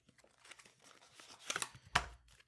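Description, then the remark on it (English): Papery rustling and quick flicks of a deck of cards being shuffled, building to a couple of louder riffling bursts near the end, with no one talking. “Hear me shuffling the cards.”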